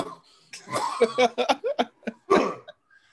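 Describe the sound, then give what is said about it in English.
A commentator coughs in the middle of commentary: a run of harsh, raspy coughs, several bursts in quick uneven succession with a short pause before a final loud hack, fairly loud with no talking. “Nigga start coughing in the middle of the commentary.”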